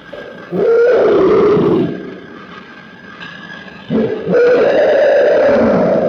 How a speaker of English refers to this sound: Let's listen to that that first clip again that we brought the show in. I want to listen to that scream again.